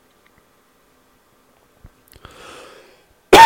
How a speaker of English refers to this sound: Tell you what, that even made me cough. That was so, Sorry, got a little fire up right there, yeah.